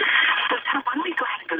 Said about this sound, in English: we need you to turn your radio off in the background. It's creating some interference that's going to prevent you from being able to hear us and us to hear you properly.